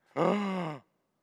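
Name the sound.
dramatic gasp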